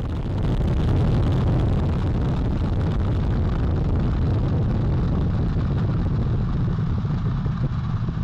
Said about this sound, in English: Engines on the core stage and two solid rocket boosters now propelling the vehicle at 128 miles per hour.